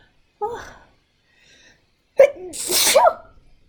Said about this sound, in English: Oh, about to sneeze.